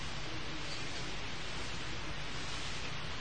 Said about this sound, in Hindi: ये छप्पर पर हो रही वर्षा, ये बूंदाबांदी, जो सुन सकता है उसे इसमें ओंकार का नाद सुनाई पड़ेगा, जो सुन सकता है उसे अनाहत की झलक मिलेगी, अन्यथा सिर्फ शोरगुल है, अन्यथा सिर्फ आवाज